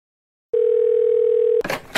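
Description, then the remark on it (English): A steady telephone dial tone hums loudly for about a second after a short silence, then cuts off into a burst of brief, clicky dialing or line noise as a call is placed to Todd Bjorkman. “It was time to get Todd Bjorkman back on the phone.”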